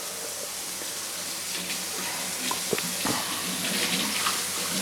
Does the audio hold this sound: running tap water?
yes